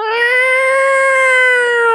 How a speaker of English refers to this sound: The cat in heat sound.